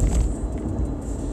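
A steady low rumble of a car engine heard from inside the car, continuous and fairly loud with no voices.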